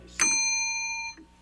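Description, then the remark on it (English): A single bright bell ding for a correct quiz answer rings out with a sharp strike and a clear sustained tone that fades after about a second, followed by a faint murmur. “Give yourself a bell.”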